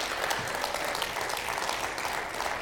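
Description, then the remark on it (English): An audience claps steadily for a few seconds, a dense, even wash of many hands at a constant, moderately loud level with no clear individual rhythm. “And it's so easy to clap about and get excited about, and it's so hard to live in.”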